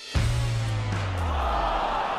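Pumped-in recorded crowd noise, played as the sound cue for a correct answer in a quiz segment, cuts in abruptly and holds steady for about two seconds, a loud wash of cheering over a low, droning hum, with no individual voices standing out.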